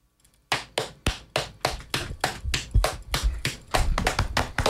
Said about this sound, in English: Thank you, fellas. Some nice belly slaps. Nice belly slaps.